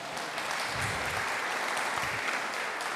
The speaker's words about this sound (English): You read that, you know, you should get a little round of applause. Why not?